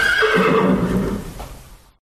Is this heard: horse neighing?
yes